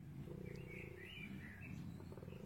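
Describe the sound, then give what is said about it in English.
A koala's deep, rasping bellow rumbles continuously, a snoring, growl-like roar with a higher wheezy edge, loud, with no one talking. “It's a scary koala noise.”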